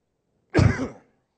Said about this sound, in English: Why can't I get rid of this cough right this second so I can speak perfectly appropriate?